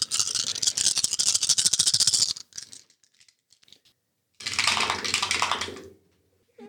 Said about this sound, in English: That was horrifying. I'm more scared of that dice roll than I am of this ghost.